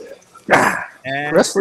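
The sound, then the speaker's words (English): A dog barks loudly: one harsh, noisy bark, then a short pause and a longer, tonal bark-whine that rises in pitch before a final quick yip. “Wrestling with the dog.”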